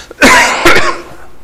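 Two harsh coughs in quick succession, the second rougher and trailing into a throaty clearing, loud and alone with no talking.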